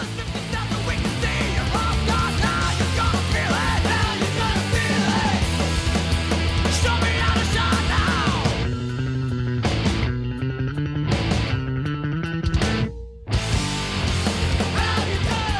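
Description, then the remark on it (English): A loud, dense punk rock song with the full band playing, then it thins out into a stripped-down stretch where a prominent bass line drives with sharp stabs before everything crashes back in. “he's yelling at Hunter, where he says like, show me how to shine now. And then the bass line really kicks in.”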